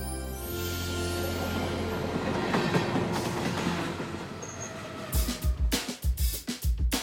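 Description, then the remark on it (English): A subway train rumbles steadily along the rails, loud, then its wheels break into a rhythmic clickety-clack over the track joints toward the end. No one speaks. “Her favorite place was on subway trains. It was like he was still out there, gliding through the city.”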